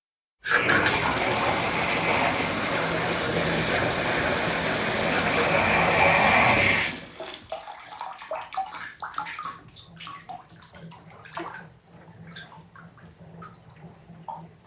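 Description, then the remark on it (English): A steady, loud rush of water pours into a steaming hot bath for several seconds, then stops. Soft, irregular sloshing and small splashes follow as water moves around in the bath. “So here she is speaking to us from a steaming hot soak.”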